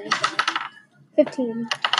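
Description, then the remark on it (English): Rapid clattering of red dice tumbling across a hard tabletop, rolled for throwing an axe in a game, a burst of small clicks, a brief pause with a short voice, then another quick rattle of dice. “Yeah, roll your red dice.”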